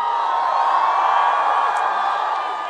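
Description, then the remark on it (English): A large crowd in Los Angeles cheers and roars steadily as Jane Sanders is introduced, a dense, loud wash of voices and whoops that holds without pause for the whole stretch. “My gosh, what an incredible crowd.”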